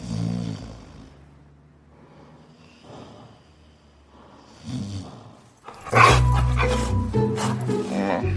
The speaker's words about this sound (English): But let me play the clip. This is Adam Pally being woken up by a large dog.